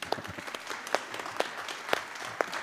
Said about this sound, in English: That is stunning. You can clap at that point.